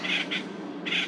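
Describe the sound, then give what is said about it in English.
Loud, harsh squawks of bright green parrots fighting in Topanga, in three quick bursts, a pair close together then another after a short gap, over a steady background hum. “Whoa, parrot fight.”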